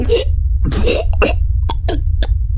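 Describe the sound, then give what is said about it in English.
A woman leaning over someone makes a harsh run of choking coughs: a few longer, strained gagging bursts followed by shorter sharp hacks, irregularly spaced over a steady low rumble. “She makes a choking, coughing sound.”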